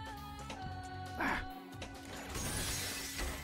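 Video game glass shatters with a sharp crash, followed by a bright, hissing spray of breaking shards, heard over steady humming game music.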